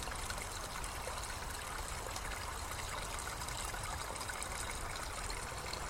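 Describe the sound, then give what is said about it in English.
A small waterfall trickles and splashes steadily, a continuous bright wash of running water, with no voices or other sounds breaking through. “although these are small waterfalls, they are still waterfalls and just as integral to the environment around us.”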